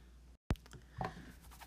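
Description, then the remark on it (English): Tarot cards being shuffled: soft papery rustling and sliding, a sharp snap after a brief silent break, then more light scuffing of cards against each other. No one speaks. “So let me give these a real good shuffle and drink some more tea.”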